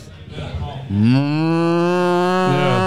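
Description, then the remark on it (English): A person's voice imitates a cow with one long, loud, sustained moo lasting about two seconds, preceded by a brief stretch of quieter background noise. “That's the sound they make when you pull up on the road next to them they look at you.”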